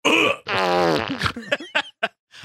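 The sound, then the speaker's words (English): A voice makes a drawn-out, buzzing fart noise with the lips, loud, breaking into a few short sputters at the end. No words are spoken. “Is a fart a butt gag?”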